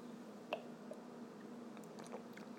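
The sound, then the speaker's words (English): Quiet sipping of a Guinness stout beer at 8:30 a.m., the first Guinness just opened: a few soft, wet slurping and swallowing clicks spaced out over a faint steady hum, with no voices. “8:30 a.m., crack of the first Guinness, about to have a sip.”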